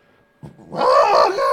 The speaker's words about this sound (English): Excuse me. A burp's much less gross if you scream in pain while you do it. That's how that works.